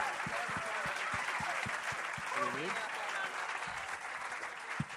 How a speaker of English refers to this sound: Can we have a round of applause for our panel